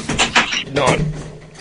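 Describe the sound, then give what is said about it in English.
A door swings open with a couple of rustling, scraping bursts as someone walks in through it into Sobrado, moderately loud, with a faint hum of background noise underneath. “Gotta walk in through these doors right here.”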